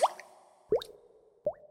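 Three liquid drips plop one after another at a slow, even pace, each a short hollow blip rising in pitch, clear against an otherwise quiet background.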